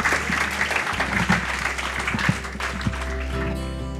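Steady audience applause fills the room, a dense wash of clapping hands from a sizable crowd, sustained for several seconds at moderate loudness before a low musical tone creeps in near the end.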